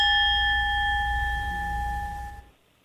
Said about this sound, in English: Oh, I didn't know. That was an awful big bell.